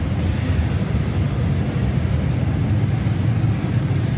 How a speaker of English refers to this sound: And the train comes and he goes.